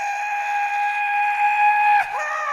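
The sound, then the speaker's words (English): A loud, sustained whistle of an amusement ride train about to depart blows steadily with several harmonic tones, then briefly dips and bends in pitch near the end before resuming. No voices are present. “For your safety, remain seated with your hands, feet, arms, and legs inside the train, and be sure to watch your kids.”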